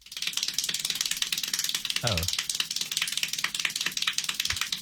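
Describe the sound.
Extremely rapid hand clapping from a world-record attempt for the most claps in one minute, 1,140 claps, in an unbroken, buzzing stream of sharp claps, almost too fast to count, steady in loudness throughout, with a brief exclamation from a voice partway through.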